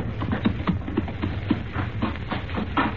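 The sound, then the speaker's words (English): The hooves of a couple of horses clip-clop in an uneven, steady rhythm over hard ground toward a cave, with a low rumbling background and no voices. “Well, if someone comes along, we don't want them to investigate a couple of horses standing in front of this cave.”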